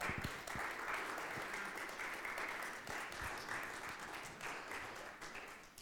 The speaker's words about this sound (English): Can we give those a round of applause this morning?